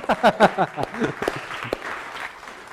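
An audience breaks into applause, a steady patter of many hands clapping at moderate loudness that lasts a couple of seconds, with a brief voiced whoop or cheer at the start.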